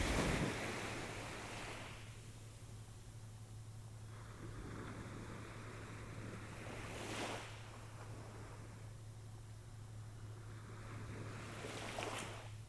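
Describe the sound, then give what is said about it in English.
Ocean waves wash in steadily, with broad surges of surf rising and receding every few seconds over a constant low rumble, heard alone without any voices. “Listen to the sound of the ocean.”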